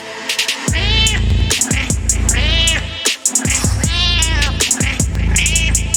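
Loud cat meows repeat in a looping pattern, several drawn-out cries rising and falling over a heavy low thumping background, with no one talking.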